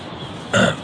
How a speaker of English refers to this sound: but that is a hobbit burp. When you hear that, really pay attention. Those are close to you. And they can come upon you without you seeing them. And you hear that burp, you hear you'll hear that noise where they're saying yes.